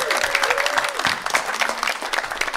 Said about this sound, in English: So can everybody give Alex a round of applause, getting ready for a song?